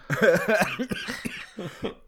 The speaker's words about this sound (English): Excuse me. Oh, wow. I am also sick. So that's... I just coughed in the microphone. Sorry about that, everybody.